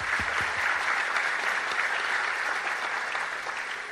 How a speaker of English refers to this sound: I'd like you all to give him a round of applause. I know you're going to give him more.